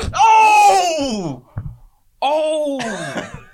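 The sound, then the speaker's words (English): A voice performs an exaggerated fake sneeze: a long, wavering, falling vocal build-up, a short pause, then a second loud voiced burst that trails off. “Can you do a convincing fake sneeze?”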